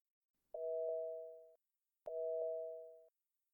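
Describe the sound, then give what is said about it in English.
A telephone line tone sounds twice as a prank call is placed, each a steady electronic beep lasting about a second with a brief gap between, clear with no voices around it. “Oh, yeah, I need the phone. We're going to do a prank call.”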